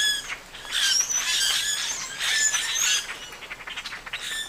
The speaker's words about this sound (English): Multiple individuals calling here. So this is the common grackle. It's slightly larger than a blue jay, yet smaller than a crow.